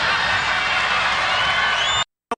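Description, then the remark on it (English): A political rally crowd cheers in a loud, dense wash that roars steadily for about two seconds, with a high whistle rising near the end before it cuts off abruptly, followed by one short burst. “And the cheering is a little bit concerning as well.”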